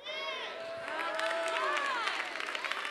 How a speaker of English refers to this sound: Could I get a little more hand claps? I'm a little old school church, babe. I need just a little clap. That's it.